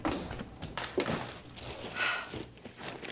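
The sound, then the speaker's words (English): Muffled knocking and scattered thumps at the door by an Instacart delivery driver, irregular, with shuffling movement in between; no one speaks. “The Instacart driver was at the door.”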